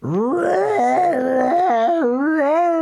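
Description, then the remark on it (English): A loud, drawn-out animal scream from a large swamp that wavers and steps up and down in pitch, wailing and groaning continuously for a few seconds, with no talking. “More animal screaming.”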